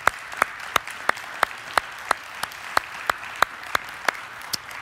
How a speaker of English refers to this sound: Somebody's clapping back there. I think that's so appropriate.